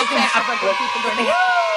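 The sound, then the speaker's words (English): An applause sound effect: a short burst of a crowd cheering, with overlapping whoops and a rising shout near the end, mixed in with applause at a steady, fairly loud level. There is no separate talking. “I need to get my technology on this podcast good enough to give you like a little applause.”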